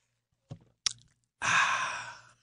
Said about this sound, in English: I have to take a sip of coffee.